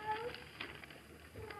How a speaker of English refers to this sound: Cat. The neighborhood is cat full. Oh, it's right outside our door, I'm sure.